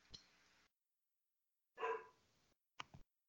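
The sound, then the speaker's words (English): A dog downstairs barks in three separate bursts, the middle one loudest and longest, then a short sharp yap, with pauses of silence between them and no talking. “Yeah, well, let's sweet talk the dog.”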